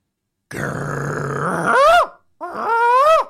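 A monstrous dog beast outside a closed door lets out a deep, rumbling growl that rises into two loud, drawn-out howling barks, menacing, with no one speaking.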